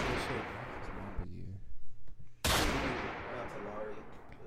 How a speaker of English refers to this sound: Hold on. Let me get you some gunshots.